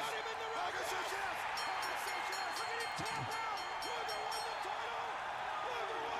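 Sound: arena crowd cheering wildly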